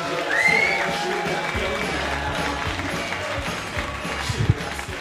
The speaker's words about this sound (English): If you could, start the applause. Welcome on stage, the second act.